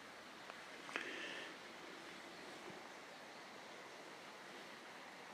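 A steady, soft wash of slow-moving water flowing continuously, fairly quiet and even throughout, with a brief faint click near the start and no voices.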